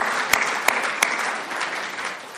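An audience claps together, a dense rush of applause with a few sharp, evenly spaced claps standing out at the start before the clapping settles into a steady, moderately loud patter.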